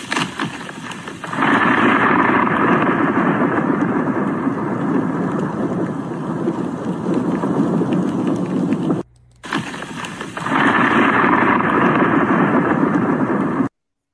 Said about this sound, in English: They had to travel there because the snow was too great, over 5 feet in one snow setting, and they had what they call thunder snow.